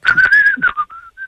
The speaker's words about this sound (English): Hey, whistling. Yeah, I love it. Right. He's way better at it than you are. He whistles about the same speed as I do.